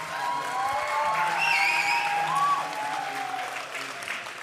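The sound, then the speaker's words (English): A crowd claps steadily for several seconds to welcome a speaker, the dense applause at an even level, with a few whoops and faint cheers rising above it midway through. “So let's give her a big New Day clap.”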